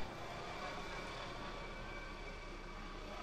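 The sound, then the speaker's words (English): A helicopter from the Barts and London General Hospital taking off, its engine a steady, fairly quiet whining roar that holds evenly throughout with no voices. “We'll just listen to the helicopter from the Barts and London General Hospital take off.”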